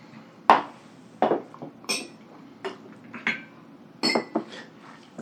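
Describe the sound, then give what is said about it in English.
Drinking glasses clink together in a toast, about eight sharp, bright taps in an irregular cluster, fairly loud, with no voices over them. “Drink. Yeah. Drink. Clanky clink. Clank. Clank. Clank.”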